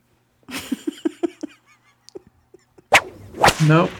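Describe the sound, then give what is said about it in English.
Whips crack sharply: a quick run of lighter snaps and smacks, then a pause before two loud, ringing cracks near the end. No one speaks. “You know there's some whips in that film.”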